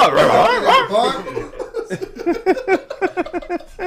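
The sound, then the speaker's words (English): A man imitates a dog with a few loud, yelping barks, then slips into a rapid, rhythmic burst of chuckling laughter. “Start talking bark, nigga.”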